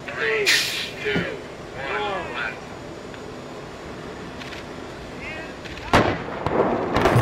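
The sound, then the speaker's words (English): Several sharp, booming blasts from a building demolition implosion go off in separate bursts, some quieter and some louder, over a rumbling bus and occasional shouting voices. “The building just blew up.”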